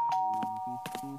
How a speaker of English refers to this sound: But just as I'd settled down, the doorbell rang.